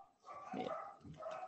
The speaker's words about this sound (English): Yeah. I also have dogs. Yeah, I was going to say, I hope that's not the reverb on my mic, but then I was like, oh, that's dogs. Okay, we're good.